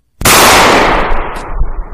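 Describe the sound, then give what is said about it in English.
A single loud gunshot cracks out suddenly, then a heavy, rumbling echo lingers and slowly fades over the next couple of seconds. No one speaks. “A gun?”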